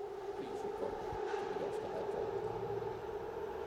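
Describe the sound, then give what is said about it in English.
A New York City subway train, the G train (the 'ghost train') running between Brooklyn and Queens, rumbles steadily, a loud continuous roar with a sustained metallic whine running through it and faint clanks underneath, no pauses throughout. “Please stand clear of the closing doors. You're now boarding the ghost train.”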